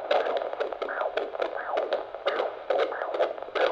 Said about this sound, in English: It's the sound every new parent gets excited to hear. The heartbeat of their soon-to-be baby.